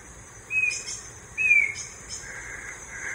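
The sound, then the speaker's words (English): A black-crowned antshrike, formerly called the western slaty antshrike, at Tranquilo Bay, Bocas del Toro, Panama, gives two clear, high whistled notes about a second apart, each a short bright tone that slurs slightly downward, over a steady hiss of insects. “That's the black-crowned antshrike.”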